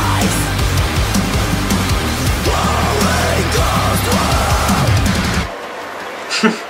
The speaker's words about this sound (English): Listen to me scream.